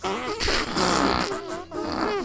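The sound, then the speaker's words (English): Wet, sputtering fart noises squelched out by hand, a run of bursts with buzzy, wobbling tones, loud, with a short pause between them. “It is fart sounds from your hand because the world is oh so mean.”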